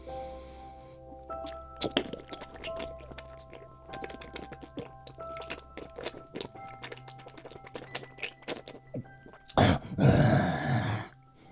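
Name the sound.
drinking water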